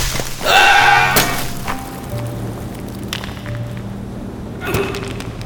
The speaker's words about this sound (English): A rock gives way.